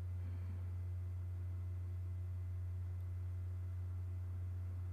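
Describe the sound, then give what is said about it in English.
A soft, steady low drone holds unchanged for the whole stretch, a sustained monastic-like tone with a faint hiss around it and no voices. “I'm hearing more song, almost very soft, but very almost like a monastic kind of tone.”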